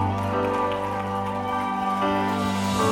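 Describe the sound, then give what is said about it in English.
A church audience claps together to thank the Lord, in a dense, steady patter that sounds like heavy rain, holding loud and even for about three seconds over sustained low musical tones. “I teach my church that your clap sounds like rain.”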